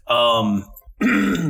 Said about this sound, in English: excuse me, this time of year, it's every time of year for me with having to cough and clear my throat.